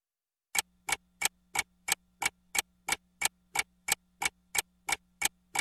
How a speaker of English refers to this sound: One, two, you hear the clock ticking. Tick, tock, you about to stop living.